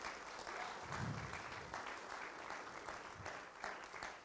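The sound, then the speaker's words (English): An audience claps hands for God in thanks for land provided, a steady, dense wash of applause that holds at an even level for about four seconds, with scattered voices mixed in. “I think that's a thing to clap God, to clap the hands for God.”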